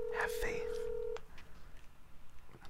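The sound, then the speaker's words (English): Telephone dialing tones as a phone call is placed to a friend: a few quick electronic beeps, then a steady, fairly loud tone that holds for about a second before cutting off abruptly, leaving low background noise and faint voices. “I'm calling him.”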